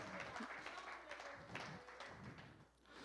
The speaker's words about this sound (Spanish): Pues dele el aplauso a Jesucristo en esta hora.